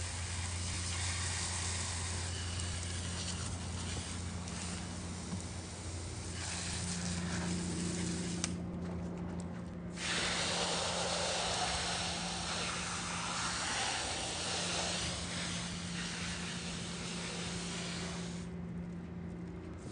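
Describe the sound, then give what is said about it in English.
A hose sprays water in a steady, loud hiss over surf gear at the end of a surf session, briefly cutting out twice as the stream shifts, with a low constant hum underneath and no talking. “Kind of like these lives, but I'm gonna set this camera up here and hose off my stuff.”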